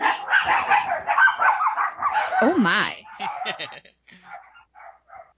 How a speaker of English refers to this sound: My dogs got really excited about that part of the episode.